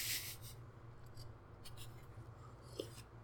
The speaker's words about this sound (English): Just took a sip of my tea.